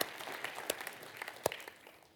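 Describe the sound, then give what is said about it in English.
An audience claps together in a dense burst of applause, many hands overlapping into a steady crackling wash with a few sharper claps standing out, gradually thinning toward the end. “If we want to clap, we clap. That's a great thing to clap for.”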